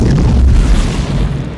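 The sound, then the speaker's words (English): A pickup truck driven off a cliff crashes and explodes: a loud, deep explosion with a heavy low-end boom that rolls on as a sustained rumble for over a second, dense and crackling, with no voices present. “And then it explodes.”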